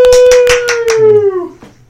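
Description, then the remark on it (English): Five or six loud, sharp claps in quick succession, harsh and clipped from being right on a microphone, with a steady held tone underneath that slowly slides lower as the claps stop. “If clapping into a microphone didn't sound terrible.”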